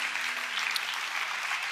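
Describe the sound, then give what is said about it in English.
The whole church claps and applauds steadily as people come forward for prayer, a dense, bright wash of many hands with no pauses, holding at an even loudness throughout. “Keep coming. Keep clapping.”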